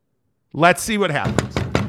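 After a moment of silence and a brief vocal sound, a door is knocked on several times in quick, sharp succession, fairly loud.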